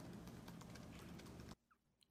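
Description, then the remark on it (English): A dense, rapid clatter of reporters typing on several computer keyboards at once as a Michigan captain says he guarantees Michigan will beat Ohio State, cutting off abruptly, leaving near silence with a couple of faint clicks and a sharp knock at the end. “What cracks me up about that clip is right as it comes out of his mouth, you hear the yeah on the keyboard.”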